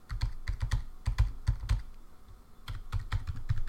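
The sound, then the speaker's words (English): Crisp keystrokes on a computer keyboard, tapped in quick bursts with a short pause midway, as someone types a password of random numbers. No one speaks. “Let's give it a password.”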